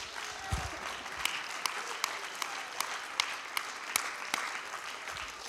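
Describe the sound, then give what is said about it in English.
A crowd at a Christian service claps their hands to magnify Jesus in a steady wash of applause, with sharper individual claps standing out at fairly regular intervals above the dense patter. No one speaks. “If you have hands, let's clap them and let's magnify Jesus.”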